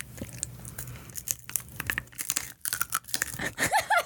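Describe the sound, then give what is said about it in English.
Loud, irregular crunching of a crispy snack being bitten and chewed while eating for ASMR, with sharp crackly bursts and rustling between bites, and a few brief high squeaky sounds near the end. “What a satisfying crunch sound.”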